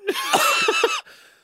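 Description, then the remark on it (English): In a studio, a man gives a harsh, strained cough while crying but not sneezing, several rough bursts run together over about a second, then trails off into a faint, quieter breathy tail. “He's having a bit of a cough and a cry, but he's not sneezing yet”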